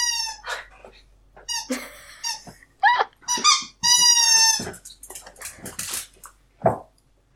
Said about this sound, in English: Sorry, I don't know whether anybody can hear, but my dog is playing with its squeaky toy and I have to keep taking it off him.